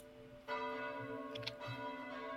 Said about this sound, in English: And as you are making your way down the street, you start to hear bells. Good. It sounds like alarm bells.